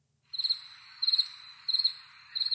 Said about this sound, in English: Crickets.